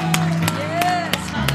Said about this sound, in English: Come on now, give him a hand clap and shout of praise in this house this morning. Hallelujah.